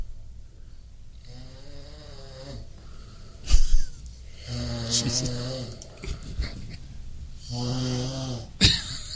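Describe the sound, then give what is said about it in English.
A recording of a person snoring: loud, rattly snoring repeats in slow breaths, about three long drawn-out snores with a sharp snort between them, prominent throughout. “Did you record yourself snoring”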